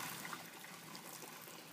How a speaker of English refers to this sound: Quite a lot of wee, isn't it? It's quite a lot of wee, but I had a pint.